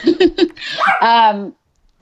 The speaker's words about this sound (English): Hold on, my dog is going to try to kill a squirrel, but please continue telling us while I restrain him.